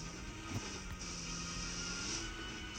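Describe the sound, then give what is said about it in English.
A steady, unbroken airplane drone hums through the whole moment, even and fairly loud, like a plane passing overhead in a video game, with no voices over it. “Dang, we gotta go towards that plane. Where's the plane always going at, man?”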